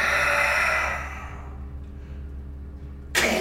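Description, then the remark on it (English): A voice imitates the roar of a dog-faced demon forming from flames: one loud, breathy, raspy blast lasting about a second that fades into low background hum, then a brief sharp burst of noise at the very end. “And it roars.”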